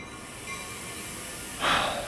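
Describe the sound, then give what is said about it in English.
An Amtrak passenger train sits with a steady mechanical hum and faint tonal whine, then a short, loud hiss of released air bursts out near the end. No one speaks. “Walking down the side of the Amtrak train and coming out into that space is something that I always look forward to.”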